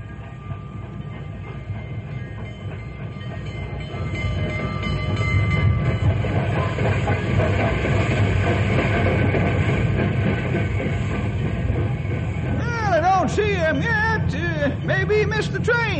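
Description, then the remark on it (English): The Fireball Express train rumbles in on the tracks, its loud, steady roar swelling after a few seconds, then high screeching squeals of braking wheels rise and fall near the end. “Here comes the Fireball Express now.”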